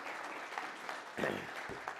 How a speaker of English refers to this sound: Praise God, huh? Man, yeah, you can clap.